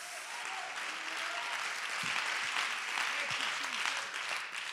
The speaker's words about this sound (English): Oh, somebody clap your hands if you hear God talking to you right now.